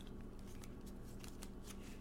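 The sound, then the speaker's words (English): A deck of tarot cards is shuffled, a soft continuous rustle broken by repeated crisp flicks and slaps. It is fairly quiet, with no voices. “Okay, let's start our shuffle.”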